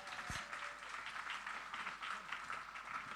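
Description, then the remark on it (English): A crowd at a meeting applauds steadily throughout for a man who makes origami, a dense wash of many hands clapping at once with no voices on top, at moderate volume. “Should we give him a round of applause?”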